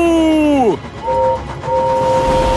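Gordon, an express steam engine, thunders past over a rumbling, hissing roar. His whistle sweeps sharply downward in pitch as he passes, then sounds two more steady toots, the second one long and held.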